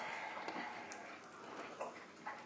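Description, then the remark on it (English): A dog laps water from a bowl, producing faint, irregular wet clicks and slurps against a steady background hiss, with no one talking. “My dog is really enjoying his water. It's just thirsty.”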